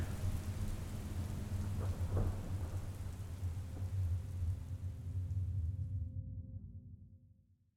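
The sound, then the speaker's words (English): Steady rain hisses across everything while deep thunder rumbles low and continuous, swelling in the middle before the whole storm fades out toward the end. No voices. “I have a feeling it's going to rain.”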